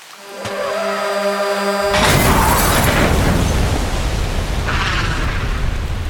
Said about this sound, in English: In the blink of an eye, a semi-truck barreled through the intersection, slamming into the bus. The two vehicles crunched together, sliding into several cars and landed in a twisted, horrid heap of smoke and metal.